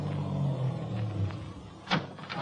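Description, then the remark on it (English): A car engine rumbles low, then a single sharp thud of a car door shutting cuts through near the end. No voices. “I started my car away from the curb slowly, keeping him in sight.”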